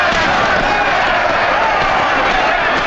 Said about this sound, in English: With a flurry of punches, Joe drives Gilbert across the ring. He keeps connecting, pinning Gilbert in the corner.